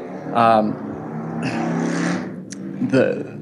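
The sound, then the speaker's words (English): A motorcycle passes by, its engine rising in a couple of loud revving surges over a steady, droning rumble that swells and fades across a few seconds. “Did you hear the motorcycle?”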